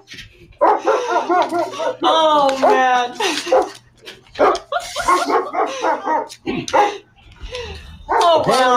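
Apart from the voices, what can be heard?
police dogs barking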